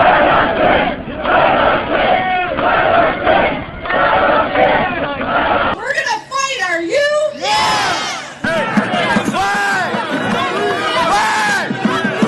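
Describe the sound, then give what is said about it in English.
A large protest crowd at the Capitol chants "Let us in!" together in loud, rhythmic unison, then individual voices shout over a dense, agitated din of many people, like a protest chant breaking into yelling. “And so now the crowd is chanting, "Let us in! Let us in!”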